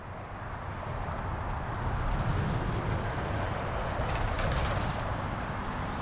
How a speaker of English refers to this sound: This is what it sounds like when 300,000 cars pass through a single spot every single day. This is Highway 101 in Agoura Hills, essentially on the border between Los Angeles and Ventura counties.